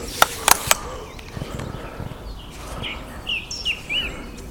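A song thrush sings outdoors in short, bright repeated phrases that mimic a kookaburra, over a soft ambient hiss, after three sharp clicking notes at the start.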